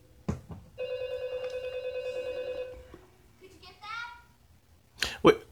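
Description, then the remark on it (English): A house phone rings with one long, steady electronic trill lasting about two seconds, followed by a shorter warbling chirp. A few brief knocks and rustles sound around it. “Am I tripping, or does everybody in this opening have the same ringer, same house phone?”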